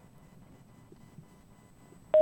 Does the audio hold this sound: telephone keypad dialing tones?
yes